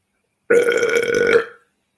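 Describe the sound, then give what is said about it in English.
A single loud, drawn-out burp after lunch, lasting about a second, with a croaky, resonant tone and a quick tail-off into silence. “One of the laws that I was studying right after I burped.”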